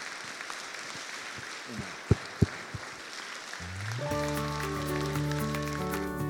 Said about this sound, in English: can we just give them a round of applause and say thank you again?